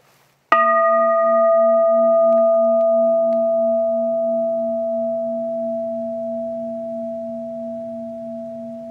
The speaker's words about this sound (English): There are no words I could say to you that will be the same as simply hearing that bell.